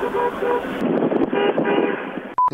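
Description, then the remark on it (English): Steady roaring wind and road rush, as if from a moving vehicle's open window, ending in one short, loud, high-pitched horn blast. “And here's my horn, boys.”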